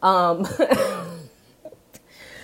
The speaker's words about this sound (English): If you're only listening to this on podcast, I really do apologize for all the coughing. It probably sounds intense.